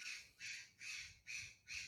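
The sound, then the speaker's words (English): A bird squawks outdoors by a swimming pool in a steady series of about five harsh, raspy calls, evenly spaced, with no voices over them. “That's one of our birds. We have two really beautiful kinds of birds that come and hang out and splash in the pool.”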